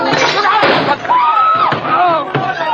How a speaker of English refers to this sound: No, no, he knocked my hand. The revolver went off. The shot went wild, I swear it did.